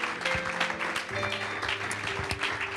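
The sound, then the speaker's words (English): A church audience claps hands unto Jesus in a steady, dense patter of many hands at once, sustained and fairly loud, with a held musical tone underneath and faint voices mixed in. “While you're clapping your hands, can you just say thank you, Jesus?”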